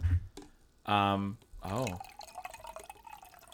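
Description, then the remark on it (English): A woman pours herself more rum into a glass in a couple of short bursts, the gurgling tone rising as it fills, followed by faint trickles and drips. “It smells like pineapple and rum. Oh, nice. She's pouring a drink.”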